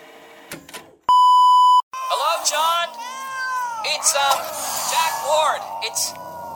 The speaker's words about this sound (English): Let me rewind the answering machine here.